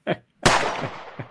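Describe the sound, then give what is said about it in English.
A brief pop, then a loud, sharp gunshot with a long echoing tail and a couple of fainter follow-up cracks, as if played back from a video. “out here shooting.”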